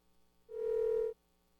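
A single steady telephone line tone sounds for a little over half a second, clear and fairly loud, then cuts off abruptly, leaving faint background noise with no one speaking.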